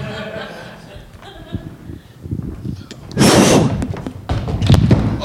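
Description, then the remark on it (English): After a few soft knocks and shuffles, a person is thrown through a door, crashing it open in a heavy, splintering burst, followed moments later by a second rough clatter of debris. “We could throw Rick through it”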